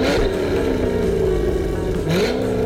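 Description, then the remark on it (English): A car engine revs loudly for a few seconds, its droning pitch wavering and climbing near the end, with no one speaking over it. “So, let's get revved up!”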